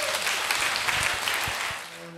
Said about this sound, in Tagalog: Amen. Yung malakas sa palakpak.